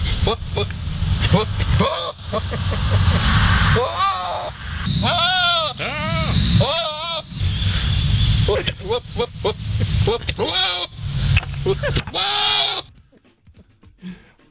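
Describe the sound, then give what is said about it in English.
Loud, wavering goat mating bleats and guttural blubbering calls repeat in bursts over a steady rumble, several strained cries in quick succession before cutting off abruptly. “All I could think about was goat mating noises.”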